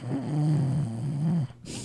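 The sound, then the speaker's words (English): A person does an exaggerated fake snore: one long, loud, rattling inhale, ending in a short breathy puff of air. “That was a very effective that was just for you snore.”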